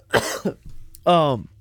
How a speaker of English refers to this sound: Right when I start getting going, I got a cough.